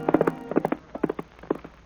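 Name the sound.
horse hooves clip-clopping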